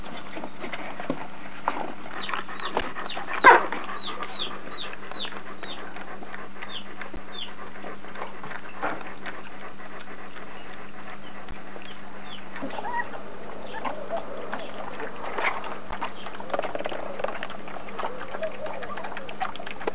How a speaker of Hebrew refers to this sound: צפצוף ברקע הזה של האפרוחים שעדיין חיים.